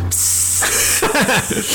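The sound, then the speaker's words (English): A voice imitates the hiss of a pressurized fermenting tank: a steady, loud, sharp spray-like hiss lasting over a second, with brief voiced, wavering tones mixed in near the end. “But I got done with work at like 2:30, 3 o'clock, and we heard one of the fermenting tanks.”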